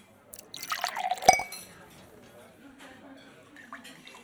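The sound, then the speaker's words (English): Seabrook tap water splashes briefly into a glass, with a sharp clink against the rim partway through, then trails off into quieter dribbles over a low background murmur. “Should we try Seabrook tap water now?”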